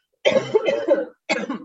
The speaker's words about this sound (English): Hold on, speaking of sickness, I got to go cough.